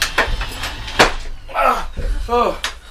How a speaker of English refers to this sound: Hurry, get into the other room. Get into the other room. Close the door.